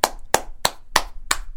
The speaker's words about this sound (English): Clap for that one again.